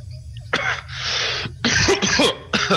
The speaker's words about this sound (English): you poke your head in one of these and immediately pull your head back out, coughing from this buildup of smoke inside the hut.